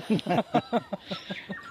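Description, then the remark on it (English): A bird call played back beside a track to draw in birds: a quick run of about nine harsh, chattering notes in a steady rhythm, loud at first and fading toward the end, heard alone. “I can imagine getting pretty bored of these calls pretty fast.”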